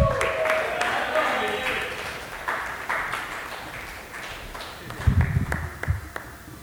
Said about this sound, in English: And please join me in welcoming your lovely host for the evening. Give her one round of applause,